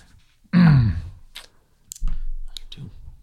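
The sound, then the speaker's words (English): Dice clatter and click in a few sharp, scattered taps, after a low drawn-out vocal grunt at the start. “Sorry, I'm still trying to warm the dice before we actually have to fight”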